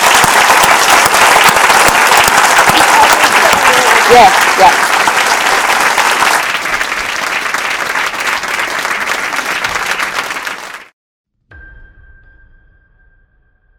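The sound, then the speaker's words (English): Loud, sustained applause from an audience at a literary festival in Aberdeen, applauding the guests, lasts about ten seconds, then cuts off abruptly, followed by a brief faint tone and a short spoken word. “Ladies and gentlemen, just finally, please give a round of applause for our wonderful guests.”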